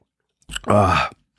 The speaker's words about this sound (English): That's why I'm sipping on apple juice here. I'm going to grab a swig right now while we speaking of it.